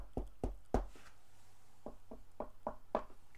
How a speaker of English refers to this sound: And yeah, there's a great moment where Richie says, well, how do we get their attention? Well, in summer camp, we would knock on the walls, and the gals would always knock back. So Patsy and Richie are like, let's do it.